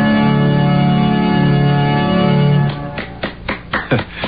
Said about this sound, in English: I know I'm not supposed to applaud in a church, but just couldn't help it.